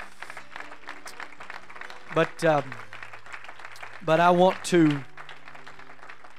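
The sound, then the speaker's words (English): An audience applauds Bishop and Sister Feld with a steady, dense wash of clapping that runs through the whole stretch, and a man's voice speaks briefly over it twice. “And I want to, I tell you what, why don't we give Bishop and Sister Feld a tremendous round of applause right now.”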